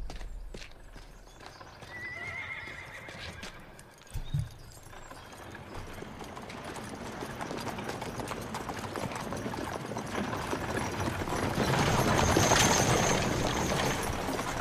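Hooves clip-clop steadily as the Queen's horse-drawn carriage rolls along, the dense rhythmic clatter building louder toward the end, with a brief high whinny early on.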